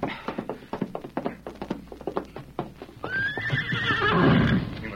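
Hooves clop in a quick, steady rhythm for a few seconds, then a horse lets out a loud whinny that rises and trails off.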